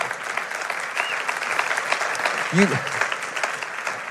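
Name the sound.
church audience applauding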